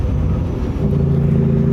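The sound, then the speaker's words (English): A heavy truck engine rumbles low and steady, then its droning note changes partway through as the driver shifts gears, settling into a firmer, even tone. No voices. “Dude, that listen to how long it is between shifts, because he's rowing that big old baby arm.”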